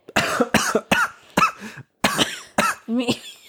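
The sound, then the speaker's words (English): A rapid coughing fit from choking on air, with a string of harsh coughs in quick bursts and a few gasping, strained breaths between them, loud and sputtering as if someone is choking. “Have I transferred my cough to you?”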